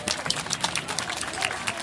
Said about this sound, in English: Hello, everybody. You guys have been amazing at helping us to test things, helping us to design things. Should we give ourselves a massive round of applause for that?